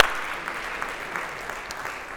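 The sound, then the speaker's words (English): A crowd applauds steadily during a sermon, the dense patter of many hands clapping at once for the roughly 50 students and leaders who went on a trip to the Dominican Republic, sustained and fairly loud throughout with no one speaking over it. “Yeah, we can clap for that.”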